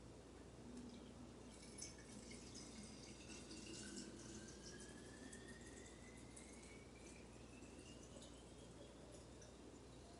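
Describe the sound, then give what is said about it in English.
Water pours steadily into a coffee maker's reservoir that already holds coffee, a continuous splashing hiss whose pitch slowly rises as the container fills, with no talking. “Then fill up water.”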